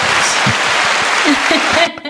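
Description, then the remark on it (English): Steady, loud audience applause for a show guest, a dense wash of many hands clapping for about two seconds, with some voices mixed in beneath before it cuts off abruptly. “Please give a round of applause again for”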